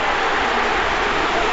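A hurling stadium crowd roars as the score is levelled at 23 points to 23, the seventh time the sides are level: a dense, steady wall of cheering that holds at a loud, even level without a break for its short length.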